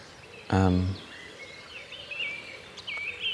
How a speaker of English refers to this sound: Got buzzed by a swallow, which is nice. And the sound of the song, bird song down here in the village, and I say village, it's barely a hamlet, it's half a dozen houses.